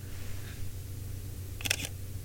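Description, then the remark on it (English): A single soft, muted shutter click from a Leica M10-P digital rangefinder camera, brief, over a low steady hum of background noise; very quiet and subtle, with no talking. “And this is the latest M10P.”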